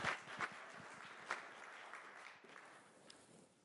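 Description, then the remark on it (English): An audience applauds a woman for sharing, many hands clapping in a dense, crackling patter that holds steady for a few seconds and thins slightly toward the end, with no voices over it. “Can we give her some applause for sharing and being...”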